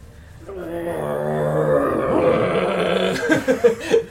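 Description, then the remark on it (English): A person imitates a growl at another character during a game turn while pointing at him, holding one low, rough, rumbling vocal tone for a few seconds, then breaking it into a handful of short, choppy guttural bursts. “We're just growling at each other.”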